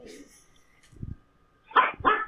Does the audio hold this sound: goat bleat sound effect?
no